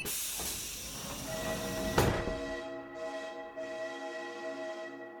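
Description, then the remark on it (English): A broad pneumatic hiss ends in a thud as the City Center Express train doors shut, then a steady layered electric motor whine rises and hums as the train pulls away. No voices. “Doors are now closing, so sit back, relax, and enjoy the ride.”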